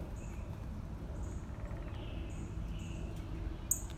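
birds chirping outdoors

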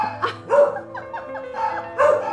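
dogs barking

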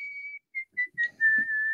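person whistling

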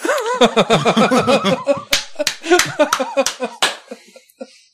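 hands clapping

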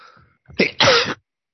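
sneezing

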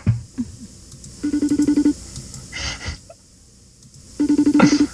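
phone call ringing tone

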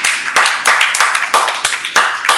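audience applause

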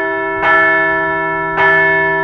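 bell ringing

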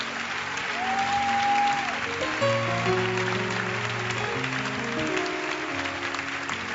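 audience clapping

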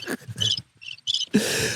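cricket chirping sound effect

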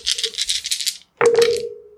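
dice rolling

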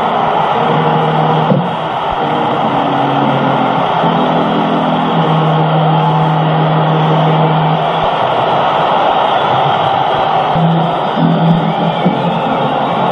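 stadium crowd cheering

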